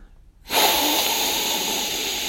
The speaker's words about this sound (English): But yeah, I mean, there's some great aromatics in there as well. Yeah, just have a good sniff. Mm.